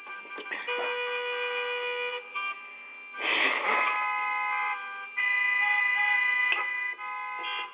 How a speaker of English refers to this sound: So here's your little traffic.